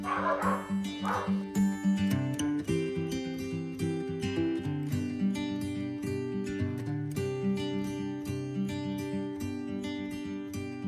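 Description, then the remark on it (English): Dogs bark over and over in a quick, rhythmic run that sounds almost musical, loud, with no one talking. “See, the dogs thought that was funny. Yeah, they like that joke.”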